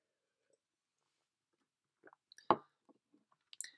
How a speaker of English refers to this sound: and I'm just going to grab a swig of water here.